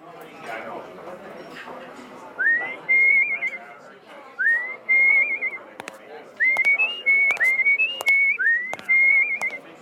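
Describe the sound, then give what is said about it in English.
A person whistles a short, repeating tune, a little ditty heard on the radio, in clear, rising-then-steady phrases, with soft background clatter and murmur underneath and a few sharp clicks. “I couldn't help but notice that tune that you're whistling there.”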